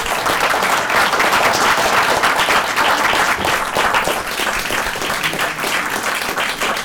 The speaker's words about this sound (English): All right, sorry guys, we have to wrap it up. We gotta keep it pushing. But, please, a round of applause for these gentlemen.